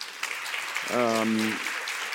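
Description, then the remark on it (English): An audience claps in a steady, dense patter for the whole moment, and a brief voiced sound rises over the applause midway before it carries on. “And don't applaud me, it's absolutely normal.”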